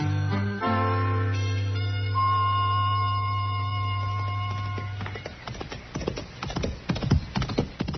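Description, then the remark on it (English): A sustained musical chord holds for a few seconds, then cuts away to the hooves of a ridden horse clip-clopping at a steady walking rhythm, clear, with no voices. “That's a good-looking horse Chester's riding”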